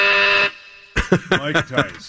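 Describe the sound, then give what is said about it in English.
A game show buzzer rings in with a loud, harsh half-second blast as a player rings in to answer a quiz question, followed by a brief pause before someone starts talking. “You got to ring in.”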